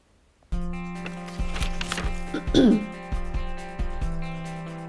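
Paper rustles and crinkles as a sheet is turned over, followed by a short, gruff throat clearing, all over a steady humming background tone.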